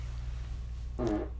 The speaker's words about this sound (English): Oh, I hope that didn't get recorded. It did. Sorry, guys. Your farts are disgusting. Very sensitive microphone.